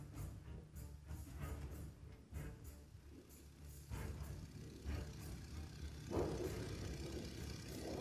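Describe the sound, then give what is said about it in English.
A steady, loud propeller-plane engine drones throughout, a deep continuous rumble with a low hum, like it's heard from inside the cabin of a military training plane in flight. “This plane we're sitting in was actually developed this year for military training purposes.”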